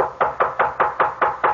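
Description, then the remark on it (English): Seven quick, evenly spaced, sharp knocks on a door, rapping in a steady rhythm with no voices present. “I can't open the door, but come in if you like.”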